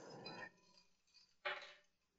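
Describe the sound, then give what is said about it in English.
Ice cubes clink against a drinking glass as a drink is refreshed, in two short bursts, one at the start and another a second later, bright but fairly quiet, with no talking. “I've refreshed my beverage here, folks.”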